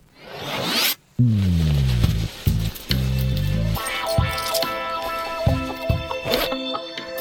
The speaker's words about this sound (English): All right. We've pulled the zipper down.